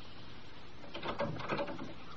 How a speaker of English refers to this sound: Why'd you close the door?